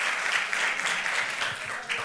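An audience breaks into steady, dense applause for the Lord during a Holy Week sermon, many hands clapping at once in a continuous crackling wash that stays loud and even throughout, with a few faint voices mixed in.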